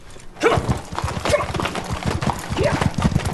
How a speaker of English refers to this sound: Now that is not a handsome horse.